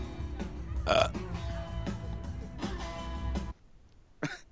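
burping

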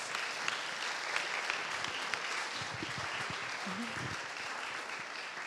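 audience applause

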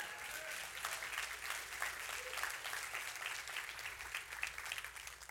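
audience clapping

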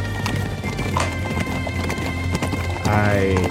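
horse hooves galloping

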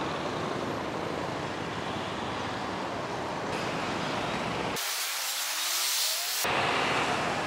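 road traffic

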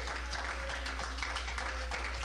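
audience hand clapping

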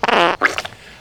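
fart

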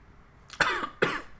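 person coughing

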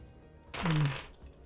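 dice being rolled

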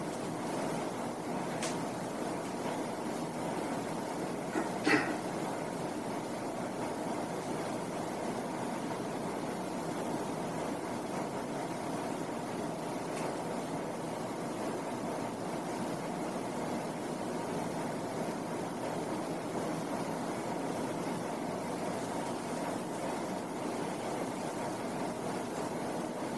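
air conditioning hum

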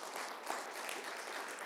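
audience clapping

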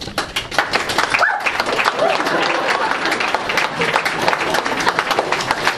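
dog barking

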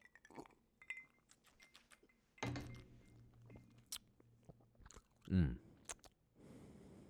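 sipping bourbon

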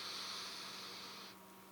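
refrigerator humming

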